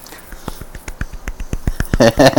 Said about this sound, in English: Way to remember numbers better than me. I applaud you. Golf clap.